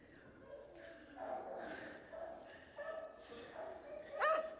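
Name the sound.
dogs barking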